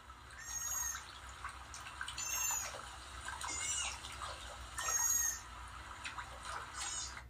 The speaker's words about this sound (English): Do you recognize that sound? If you said no, that's a sea otter. I'm sure you've seen many videos on social media about how cute they are, but have you ever wondered what they're like in the wild?